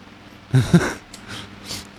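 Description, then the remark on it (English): A dog snorts, with a pair of quick nasal snorts followed by three short, breathy huffs spaced about a beat apart, fairly quiet overall with no talking. “Dog's got a lot on his mind.”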